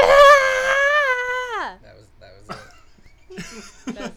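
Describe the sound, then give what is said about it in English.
A person's voice imitates a screaming mushroom with a loud, sustained high wail that slides down in pitch after about a second and a half, followed by a few brief, quieter vocal noises. “That was all the screaming mushrooms right there.”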